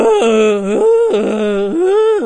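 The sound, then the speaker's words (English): A voice loudly imitates a car alarm in a film, wailing in a steady, repeating pattern that jumps between a high and a low pitch, cycling twice with no other sound. “There's a guy who plays a mentally disabled character who, for one part of the film, sounds like a car alarm going off.”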